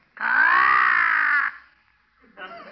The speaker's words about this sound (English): Oh, that's Arnold, our talking crow. A talking crow, huh?